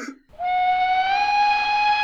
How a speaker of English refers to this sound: Pride of Duskwall is now arriving. Please allow all passengers to exit the train before boarding.